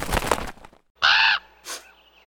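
A rustling burst as a raven and a crow land in a makeshift rookery, then two harsh corvid caws: one loud, drawn-out rasping call followed by a shorter, softer one. No talking.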